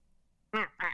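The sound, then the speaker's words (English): A person imitates a cartoon duck voice with two quick, raspy quacking bursts, loud, after a brief quiet pause. “Well, you sound like you date Donald Duck.”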